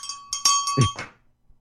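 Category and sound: signal or alarm, small bell ringing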